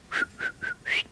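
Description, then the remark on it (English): A person whistles four short, bright calling notes in a steady rhythm to call their cats Heidi and Howdy, each a quick rising or level tone, with nobody talking. “I could, and one time, Heidi and Howdy, I would let them out, and then I could do a whistle.”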